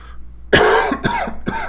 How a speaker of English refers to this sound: Excuse me. It seems I always have a cough every time I do this show.